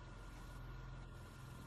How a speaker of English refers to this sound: Car's here.